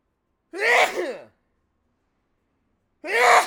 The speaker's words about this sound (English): Shit. You know, I sneeze that big. Ugh. I don't know how you sneeze, but I have to sneeze with my mouth open because I have a small nose. And if I sneeze through my nose, every muscle in my neck gets, like, flared out, and it hurts. It hurts a lot.